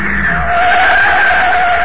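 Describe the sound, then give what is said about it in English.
A car's tires squeal loudly and steadily as it drives out onto the field, a sustained high screech over engine rumble lasting about two seconds, with no one talking. “Hey, what's the car doing? He's coming right out on the field.”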